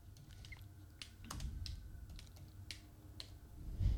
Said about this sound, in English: You've been working on your typing, huh? How fast is your typing speed?